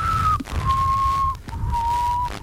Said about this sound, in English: Can you whistle? A little bit. It's not very strong.